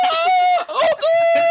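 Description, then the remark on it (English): A voice imitates an aunt's prolonged scream: a loud, high, steady wail held for over a second, broken by two brief catches before it resumes. “I remember one time somebody brought somebody over, and my Auntie Glenda screamed like for like 2-3 minutes straight, just like.”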